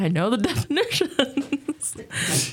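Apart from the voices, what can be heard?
sneeze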